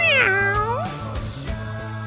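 A cat lets out one drawn-out, rising-then-falling meow, loud and clear, followed by a steady low background hum with no talking.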